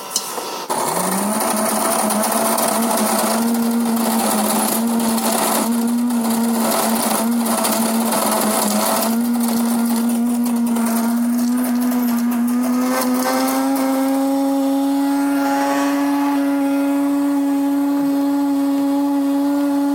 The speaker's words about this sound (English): So, to start us off, while I'm continuing to get things rolling here, I am going to turn this coffee grinder on. Here we go. This is the Breville that you heard me talk about a few weeks ago.